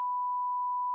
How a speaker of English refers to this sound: Oh, that's going to be the first beep for the new box.